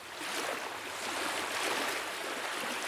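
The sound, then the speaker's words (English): Steady splashing and churning of water as someone swims through a lake, a continuous wash of sound with no voices. “From there, I swam as far as my limbs would allow.”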